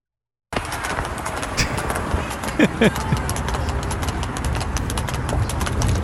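Horse hooves pound along at a running pace, a steady stream of quick clip-clop beats over a dense, noisy background that grows slightly louder toward the end.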